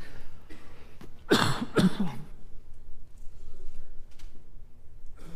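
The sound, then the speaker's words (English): A loud cough made of two or three harsh bursts in quick succession, followed by quieter throat noise and background hush. “I was supposed to turn the mic off for the cough, and then, yeah, that didn't help.”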